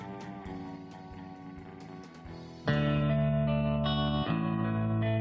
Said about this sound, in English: Pachelbel's Canon in D Major, a classical tune brilliantly adapted into the surf style